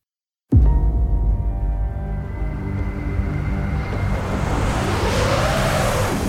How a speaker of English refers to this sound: I'm sure what I'm doing right now looks absolutely beautiful from the outside. A lone car wending its way up a majestic snowy mountain.